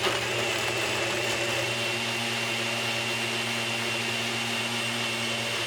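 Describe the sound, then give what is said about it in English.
A blender runs continuously at high speed, a loud, steady motor whine with a gritty churning edge as about half a cup of crushed ice is crushed and mixed with ice cream into a bushwhacker cocktail. No voices. “Throw in a little crushed ice, a half a cup or so, maybe a little more depending on the consistency that you want.”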